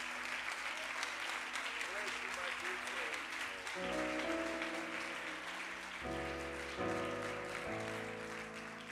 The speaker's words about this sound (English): Could you give him a great big hand clap from Fort Lauderdale, Florida, the Cathedral of Pentecost,